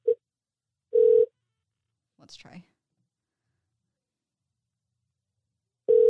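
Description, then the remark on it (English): An outgoing phone call rings out: short steady ringback tones repeat with long silent gaps between them, and a person briefly says something quietly in between. “I'll see if he calls back or if I should call him back.”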